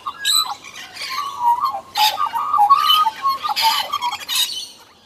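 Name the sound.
bird call sound effect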